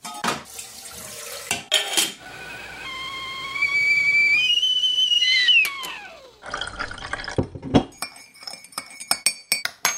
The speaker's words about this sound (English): Any more for any more, or should we stop and put the kettle on?